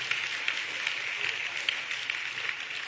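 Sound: audience clapping hands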